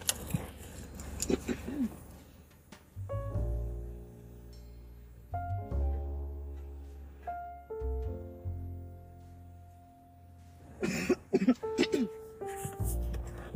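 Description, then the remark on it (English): Keys jangle and mail rustles while someone gets the mail on arriving home from work: bursts of bright metallic clinking at the start and end, with a steady low hum and ringing tones in between. “I just got y'all listening to me get the mail.”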